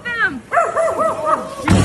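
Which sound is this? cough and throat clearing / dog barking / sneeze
dog barking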